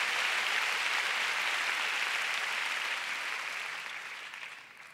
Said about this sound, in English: So come on, let's give God a big hand. Oh, you want to clap? Let's give God a big hand. Hallelujah.